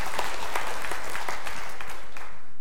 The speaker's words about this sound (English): Well, it's either good or not. Don't give me a half-hearted clap. I mean, come on.